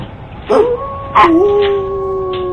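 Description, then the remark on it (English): A dog howls: two sharp rising yelps lead into a long, steady, drawn-out howl that holds its pitch for a couple of seconds over a faint background hiss. “What is it, boy? What do you hear?”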